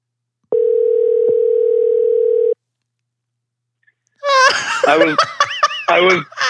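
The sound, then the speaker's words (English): A steady, continuous phone dial tone hums for about two seconds and cuts off abruptly. After a short silence, loud bursts of laughter break out. “Okay, we're calling him now.”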